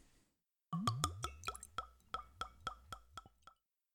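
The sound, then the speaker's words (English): Budget bourbon from a twist-off bottle glugs out into a glass, about 1 ounce, in a quick series of hollow, bubbling plops, about a dozen gulps in a steady rhythm over three seconds, with no talking. “It sounds like I poured a lot, but really, it's about 1 ounce.”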